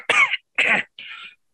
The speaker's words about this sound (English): You want a cough drop or something? Oh, no, it fades. It's over years of smoking.